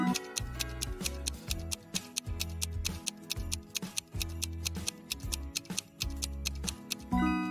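A countdown timer for a 7-second riddle ticks in a fast, steady rhythm of sharp clicks, layered over a throbbing low bass line and tense synth tones, with no voices.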